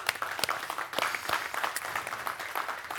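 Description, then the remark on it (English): A crowd claps for a few seconds to celebrate a year of their largest Christmas and more decisions and baptisms than ever, a dense, steady patter of many hands with sharp individual claps standing out, fairly quiet overall and with no voices. “We can clap for that.”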